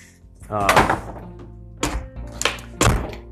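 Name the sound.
door closing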